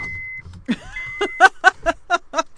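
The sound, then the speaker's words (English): A car's back power window motor whirs briefly with a rising whine, followed by a run of rhythmic, fluttering bursts as air buffets through the opening, fairly loud, as it starts to rain on a windy day. “Oh no, that's the back windows.”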